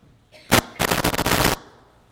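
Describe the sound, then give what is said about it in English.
Fireworks go off loudly: a single sharp bang, then a fast, dense string of crackling pops for nearly a second before it cuts off. No one speaks. “Fireworks.”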